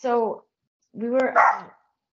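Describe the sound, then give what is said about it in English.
A dog barks twice at someone walking by at the door: a short bark and then a longer, rougher one a moment later, with brief silence between them. “So yeah, he was just barking at someone at the door.”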